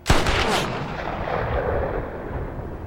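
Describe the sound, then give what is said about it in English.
A single loud long-range rifle shot, fired by LaBeef during the confrontation with Lucky Ned, cracks sharply, then rolls out into a long, low rumbling echo that lingers and slowly fades. No voices are heard. “However, Rooster is saved literally by a long shot from LaBeef.”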